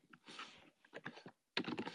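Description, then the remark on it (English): Rapid, uneven typing on a computer keyboard with crisp clicks and clacks, moderately loud, pausing briefly before a burst of quicker keystrokes; no one talks. “All right, I'll get that nice ASMR of my keyboard.”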